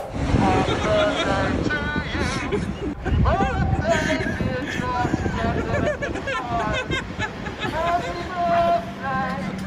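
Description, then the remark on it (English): A loud, tinny male voice sings Happy Birthday through a megaphone outdoors in Collingwood, the melody carried over steady wind rumble and faint background chatter. “in Collingwood bellowing out "Happy Birthday" through the megaphone.”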